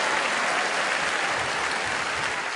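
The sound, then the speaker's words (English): A crowd applauds loudly and steadily, dense clapping filling the whole stretch without a break and with no voices rising above it. “Oh, big applause!”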